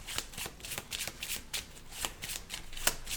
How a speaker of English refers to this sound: And now we need to shuffle the deck to raise the infection level.